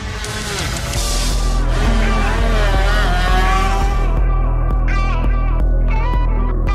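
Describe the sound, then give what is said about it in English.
The green-plated racing motorcycle of Dominic Kirbison revs hard at the start of the Dunlop Lightweight Manx Grand Prix, its loud whining pitch climbing and dipping through quick gear changes as it accelerates away, with no voices over it. “You can hear the revs rise there and the green plated machine. Dominic's away.”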